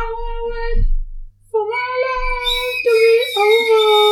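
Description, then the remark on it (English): A dog howls and whimpers, long drawn-out wavering cries with a short break between them, loud and distressed, with no one talking. “Oh, the dog. No, the dog's upset.”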